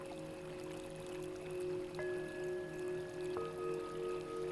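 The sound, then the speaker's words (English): Soft, steady water sounds with gentle rhythmic swells of water slowly lapping at a shore, quiet beneath a sustained, calm musical drone. “You can hear the gentle sounds of the water slowly lapping the shore.”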